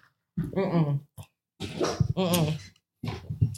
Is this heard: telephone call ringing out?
no